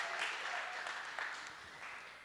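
An audience claps steadily together, a dense wash of applause that holds at an even level for a couple of seconds before easing slightly, with no voices heard over it.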